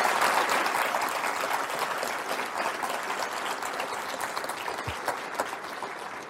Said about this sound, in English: For now, let's just give ourselves a strong round of applause for an incredible academic year that we've just had.